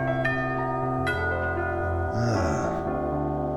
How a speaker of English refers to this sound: Doorbell! Just check the CCTV.